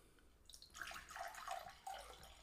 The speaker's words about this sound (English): Pouring a drink. Got to keep lubricated.